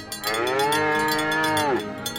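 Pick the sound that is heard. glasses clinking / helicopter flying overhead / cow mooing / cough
cow mooing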